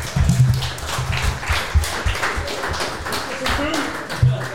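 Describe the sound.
A crowd claps steadily throughout, a dense, continuous patter of many hands at moderate loudness, with voices talking and murmuring underneath.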